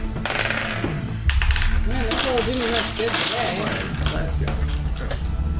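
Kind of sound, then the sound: household object, dice rolling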